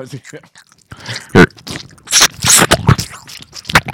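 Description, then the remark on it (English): A spoon scoops through green bean casserole, several wet, squishy scrapes and crunchy bursts coming in irregular bursts, with faint murmuring in between. “I ate it, but when you scoop it, the noise. It goes, here, ready?”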